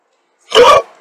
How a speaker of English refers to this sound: Sorry, guys. I've got the hiccups.